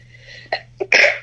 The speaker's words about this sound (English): Oh, I have to sneeze.